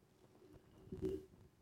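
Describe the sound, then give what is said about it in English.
A pet pigeon that lives in the home gives one soft, low, throaty coo lasting about a third of a second against a quiet room hush with no one talking. “It could be a feather from me because I have the bird with me, dude. I have the bird living with me now.”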